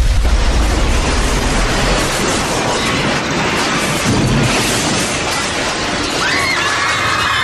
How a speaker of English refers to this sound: lets loose with a blast of glowing plasma energy, which, mingled with the release of Venusian gas, results in a massive explosion that kills Star Crab instantly, sending its giant carcass crashing down onto the Hall of Science.